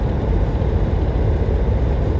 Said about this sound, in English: Oh, another bus, another cop car going by.